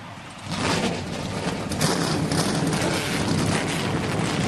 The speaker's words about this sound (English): Gentlemen, start your engines!